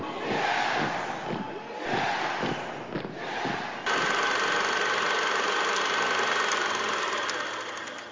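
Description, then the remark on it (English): The engine of the S2 city bus headed to Silver Spring drones steadily, with muffled voices and the murmur of passengers over the first few seconds before a louder, even rumble takes over and holds to the end. “I was riding on the S2 headed to Silver Spring.”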